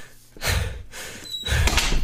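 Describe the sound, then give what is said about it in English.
A heavy door slides with two loud whooshing sweeps over a low mechanical rumble, ending as it shuts and its battery-powered lock seems to latch. No one speaks. “The door locks are on batteries.”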